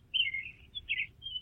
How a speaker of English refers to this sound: Are you in a bird sanctuary? No, it's actually been a terrible day. Are you in a bird sanctuary again? What's going on? I am outside on my patio, yes.